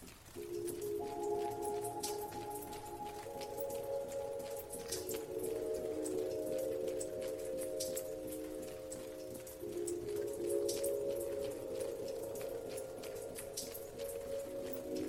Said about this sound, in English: It was the showers, the shower heads. They were all dripping. A drop every few seconds. Nothing special, except that all 12 showers were dripping. Not at the same time, but in sequence. But the sequence didn't repeat.